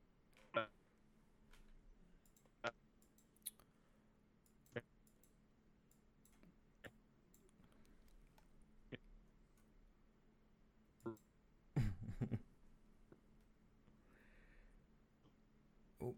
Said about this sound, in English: Oh, your mic's cutting out, in and out.